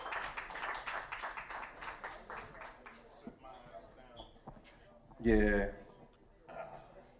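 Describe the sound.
A crowd claps and applauds steadily for about three seconds for a performer called up to play beats, then the clapping thins out under scattered voices, with a loud shout or cheer near the end.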